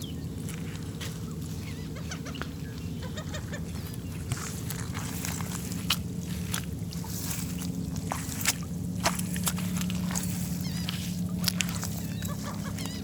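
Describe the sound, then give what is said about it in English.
Footsteps squelch across soggy, wet ground with water seeping in, as summer approaches, in a steady walking rhythm, moderately loud, over a constant low droning hum in the background. “It's, you know, it's coming into summer, but the ground's still pretty squelchy.”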